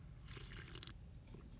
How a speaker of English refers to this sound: Ugh. Let me have a sip of this drink here.